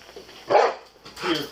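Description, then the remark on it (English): A police dog gives two sharp, yelping barks about three-quarters of a second apart, fairly loud, with a faint background hum between them, as officers move into a house and the dog struggles to grip with its paws. “Poor dog can't get a grip with his paws.”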